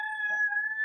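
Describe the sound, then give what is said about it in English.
A rooster crowing sound effect, used as a breaking-news signal, gives a single loud, sustained call, its bright, steady tone held for almost a second with no talking around it. “That's the breaking news rooster.”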